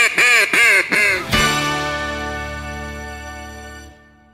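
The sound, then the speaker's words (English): Three quick, loud nasal quacks from a duck call in a rapid series, followed by a long, steady drawn-out honking note that fades and cuts off. No voices. “It's a 21st century phenomenon built on the back of one of the oldest old-school products around, the duck call.”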